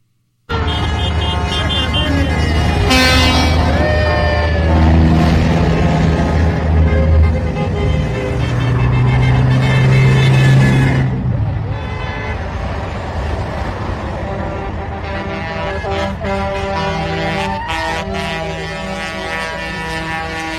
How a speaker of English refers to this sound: And to my understanding, the report that I saw is that there's over 2,000 trucks involved in this convoy now headed to D.C. 2,000 trucks headed to D.C.